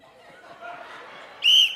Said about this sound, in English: Time's gonna start once I blow this whistle. Ready?